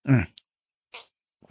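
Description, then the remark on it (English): Someone sips coffee: a short voiced sigh, then a brief airy slurp and a few faint clicks in otherwise quiet surroundings, with no talking. “I'm going to do the rare second sip of the coffee.”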